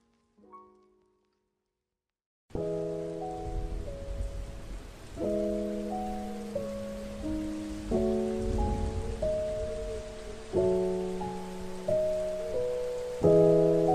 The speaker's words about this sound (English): The rain is raining all around and falls on fields.